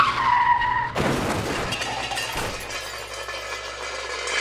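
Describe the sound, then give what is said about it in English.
A car's tires squeal in a sharp skid for about a second as a driver distracted by her cell phone drives into a tree, then a loud crash of crunching metal and shattering glass follows, with debris rattling and settling afterward. “But she'll still be so distracted that she drives into a tree.”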